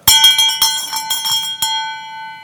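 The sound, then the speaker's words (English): A brass bell, the bell rung to quit hell week training on a military base, rings out loudly several times in quick succession. Its bright metallic clang fades into a long, humming ring after the last strike. “All they had to do was ring the bell.”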